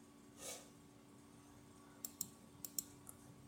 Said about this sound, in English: Oh, I'm clicking on the wrong thing here.